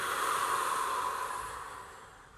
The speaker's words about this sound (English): Take an inhale through the nose, full. Hold. Holding on the inhale, 30 seconds. Stay relaxed. Fifteen, 5, 4, 3, 2, 1. Exhale.